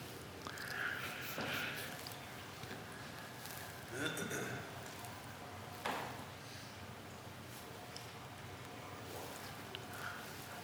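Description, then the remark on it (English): Faint water draining, heard as a steady, hissy wash with a few brief, louder gurgling surges scattered throughout, and no one speaking. “That's water draining, isn't it?”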